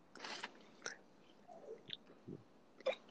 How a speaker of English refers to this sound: Sweet taste. You know, blending with the caffeine makes for a great drink. Oh, great drink. Good. 10 out of 10. I'm going to take another sip.